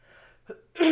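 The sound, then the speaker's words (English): A single loud sneeze: a brief catch of breath, then a sudden sharp, breathy burst near the end, with no talking over it. “No, okay. Bless you.”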